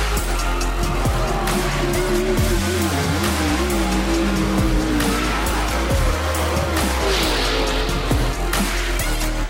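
Race car engines roar loudly and continuously while tires squeal and skid, the pitch of the engines shifting up and down through the whole stretch with no talking.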